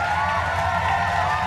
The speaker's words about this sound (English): And now the cheers.